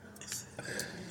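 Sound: glasses clinking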